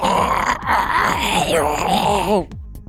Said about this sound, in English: It's almost like something between like a squid almost and a mosquito combined together. It's got like this kind of tentacle-like face as like this head just emerges from this. And like, again, you're hearing this kind of guttural screeching noise.